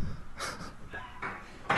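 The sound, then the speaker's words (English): A door handle is wrenched off a door, giving a few short rattling clunks and a sharper metallic clack at the end, with no talking. “just pulled the handle off. Don't shut the door!”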